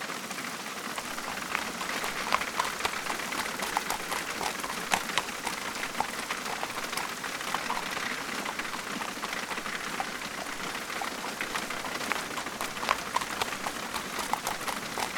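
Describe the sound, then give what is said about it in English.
Heavy, steady torrential rain pours down on a street throughout, a dense hiss with scattered sharp drips, while the hooves of horses pulling a carriage clip-clop faintly underneath. No one speaks. “pulled the horses down the street in the torrential rain.”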